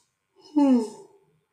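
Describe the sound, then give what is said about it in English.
A single drawn-out human yawn, fairly loud, rising into a voiced, slightly falling moan before trailing off into a breathy exhale, with no other sounds around it. “I gotta get all my yawns out.”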